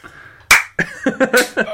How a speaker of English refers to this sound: So many citizens, they say, were impressed by his display. And here clap. Are some of the comments. Just one guy.